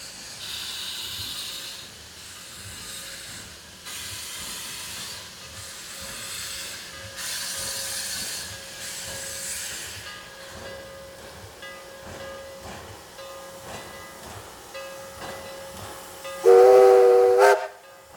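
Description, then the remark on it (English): The Clover Valley number 4 steam locomotive being steamed up at Niles Canyon on steam opening day in the rain: surging bursts of breathy steam hiss over a steady low mechanical hum, ending with a short, loud, shrill whistle blast. “So they have the Clover Valley number 4 being steamed up behind me, as you can probably hear.”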